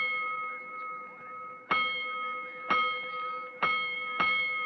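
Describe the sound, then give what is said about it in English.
A fire station alarm gong rings out during the night, calling firemen back out: a sustained metallic tone, struck four more times in quick, slightly uneven succession, each hit loud and left to resonate. “Twice more, soon after the now raging firemen returned to quarters, the great gong that sounds alarms tapped in during the night rings out.”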